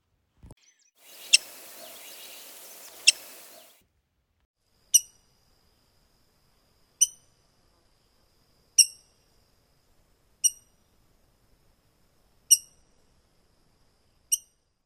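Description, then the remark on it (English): A rose-breasted grosbeak gives sharp, high squeaking calls, repeated about every two seconds, each one brief and bright, like sneakers on a gym floor. A soft hiss briefly underlies the first two calls. “The rose-breasted grosbeak call is a sharp squeak, like sneakers on a gym floor.”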